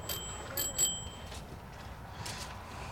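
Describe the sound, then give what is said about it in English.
A bicycle bell rings several quick times in bright, clear dings, with a faint sustained tone ringing on over a low background rumble. “Alma will be happy to know that you're using her bell. I love this bell.”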